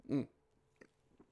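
A quick sip of Perrier sparkling mineral water: one brief throaty gulp, then two faint wet mouth clicks as the drinker swallows, with no talking.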